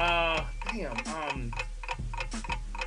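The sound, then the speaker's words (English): A game timer ticks steadily, about two crisp ticks per second, clear, as a player tries to name three LL Cool J movies in a trivia game, while voices and a brief tonal sound play underneath. “Clock starts now.”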